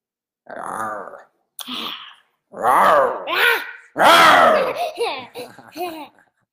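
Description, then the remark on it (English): A voice imitates a growl in a series of about five loud, throaty vocal bursts, some long and some short, with rising and falling pitch. No words are spoken. “Who can growl the best, you or me?”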